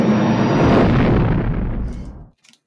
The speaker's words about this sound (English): The blast takes out a sick interceptor. Yeah, that's that. I think that as the proton torpedo annihilates a fighter, in that explosion, you see the pinpoint of another ship coming out of hyperspace.